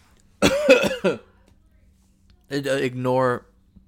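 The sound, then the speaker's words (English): A loud fit of coughing: a quick cluster of three harsh hacks, a pause of over a second, then a longer, throaty, voiced cough. No words are spoken. “Ignore the cough.”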